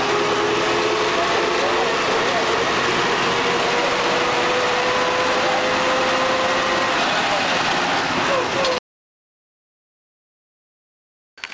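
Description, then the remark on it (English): A bus engine drones loudly and steadily as the bus rolls down the road at about 30 miles an hour, full speed, with rumbling road noise and a whining tone that slowly shifts in pitch through its many gears, running for about nine seconds before cutting abruptly to silence. “We must roll down the road at about 30 miles an hour full speed. Guy's got a lot of gears.”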